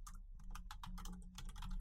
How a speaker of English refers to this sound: I'm looking. I know. I could hear you typing.